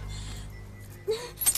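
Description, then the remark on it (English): A short metallic jingle of car keys near the end, with a small clink just before it, over a steady low rumble like a car's interior, as the keys are picked up from the floor to be put in the ignition. “Now you get down there on the floor and you get my fucking car keys and you put them in the ignition.”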